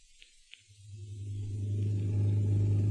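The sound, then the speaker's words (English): A new car's engine rumbles in low and steady down the street, growing louder as the vehicle draws nearer, with a couple of faint clicks at the start and no voices. The driver is bringing a friend home. “That's Zaza's new car. She's driving Gail home.”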